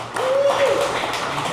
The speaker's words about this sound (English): I don't know if that applause is for us or the fact that the White Sox are up 4-0 and maybe salvaging their season right here as we did this broadcast.